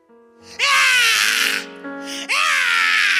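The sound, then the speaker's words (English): A newborn baby, just born in a water birth, cries in two loud, high-pitched wails separated by a brief breath, each cry strained and harmonic-rich, following a faint low murmur at the start. “This baby cries coming from the water.”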